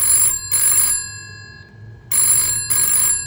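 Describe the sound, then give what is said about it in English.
A telephone bell rings loudly in two double bursts, brrring-brrring, a pause, then brrring-brrring again, with a faint low hum underneath and no one speaking. “I've been trying to call you time and again.”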